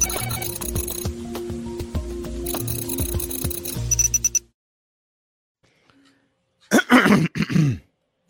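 A busy stretch of rattling, clattering noise cuts off into silence, then a close, loud burst of throat clearing and a couple of rough coughs follows, lasting about a second.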